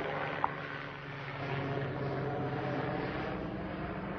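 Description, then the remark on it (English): A police helicopter flies overhead: a steady, droning aircraft engine hums continuously, a low rotor-like rumble with no voices, holding an even level throughout. “The ghetto bird goes by?”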